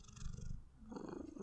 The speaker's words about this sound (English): Oh, that's therapeutic out there. That's what ASMR should be. It's just cat purring from now on.